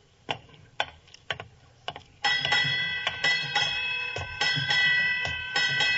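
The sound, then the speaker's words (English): A ship's bell strikes eight bells at midnight on New Year's, its bright ringing tones sounding in close pairs that overlap and keep ringing. A few sharp ticking knocks come just before. No one speaks. “Eight bells.”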